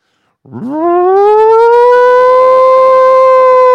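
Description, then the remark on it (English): A voice imitates an air raid siren: one loud wail that swoops upward from a low pitch, then holds a steady, sustained high tone for several seconds with no other sounds. “Oh, that's an air raid siren, sorry.”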